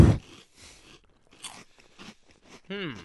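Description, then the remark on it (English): Crunching of a light puffed potato snack that looks like an oversized waffle potato chip with a straw inside: a loud first bite, then softer, irregular chewing crunches, ending with a brief voiced hum. “Good crunch.”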